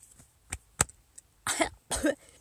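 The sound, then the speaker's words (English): A small, throaty burp comes in two short, rough bursts about half a second apart, preceded by a few faint clicks; no one speaks. “Do I need a burp?”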